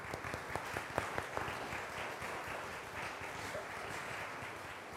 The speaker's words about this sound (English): So I will hand you all this, and if you could give her a round of applause.